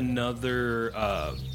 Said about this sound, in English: I have no clue where the fucking birds are coming from. The tree.